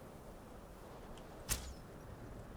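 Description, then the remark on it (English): A single longbow arrow whooshes off with a sharp, bright release at mid-clip, a short airy swish over a steady low background hum from a video game; the shot misses. “And I missed, so I am down to 1 arrow.”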